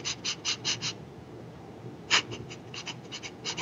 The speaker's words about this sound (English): Right now, I'm going to ask you to do what's kind of, it's called a cleansing breath. And what it is you're going to breathe in through the nose 4 times very rapidly, and then exhale through the nose 4 times very rapidly. So you're going to go.